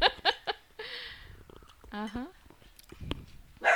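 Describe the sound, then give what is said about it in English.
A female dog gives a few short, sharp barks during a wine tasting, followed by a higher, drawn-out yelping whine, with brief bursts of human laughter and voices around it. “The dog doesn't like the wine either. She's getting upset.”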